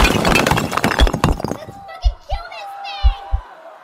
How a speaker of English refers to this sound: I hear people breaking down the basement door.